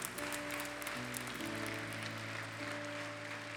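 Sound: audience applause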